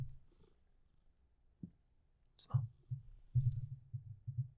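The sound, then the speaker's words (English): A female cat purrs, a low rhythmic rumble that swells in steady pulses after a quiet start, with a couple of brief rustling clicks mixed in. “Well, she's not meowing. Nope, she's not just meowing. Purring.”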